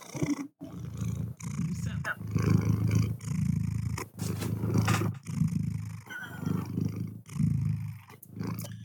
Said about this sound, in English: Hello, everyone. This is Theo purring.